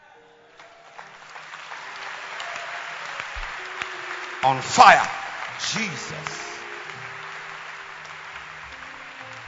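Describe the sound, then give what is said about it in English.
An audience claps steadily throughout in thanks to God, a dense, continuous wash of many hands at an even loudness, while voices call out over it and briefly swell in the middle. “Now, since you are clapping, then just clap and thank God.”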